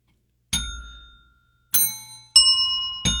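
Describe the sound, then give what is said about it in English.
Four bright bell strikes ring out one after another at slightly different pitches, like bells being tuned, each chime clear with a shimmering ring that fades before the next. No voices. “Let's go ahead and tune up our ringer dinger bell thingers.”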